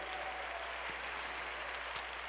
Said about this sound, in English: Why don't you clap? That just seems like a good place right there to clap your hands to the Lord. You're doing it to the Lord.